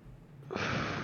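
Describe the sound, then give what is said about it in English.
A yawn: after a brief quiet moment, a loud, airy, breathy rush of air swells suddenly and holds steady to the end, with no talking. “I don't know why I yawn when I talk a lot.”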